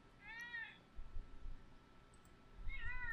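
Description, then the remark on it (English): A male cat meows angrily twice, a drawn-out complaining cry near the start and another near the end, fairly loud over a low, rumbling background; the cat gets mad when the petting stops. “See, he's very abusive, this cat. If I stop petting him, he gets very mad.”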